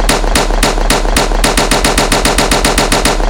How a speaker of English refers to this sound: Somebody bust a legal gunshot. Bust a legal gunshot.